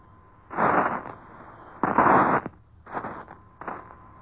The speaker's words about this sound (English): We're trying to bring you a pool broadcast, the first eyewitness recording of the shore bombardment made by George Hicks aboard an American warship at sea.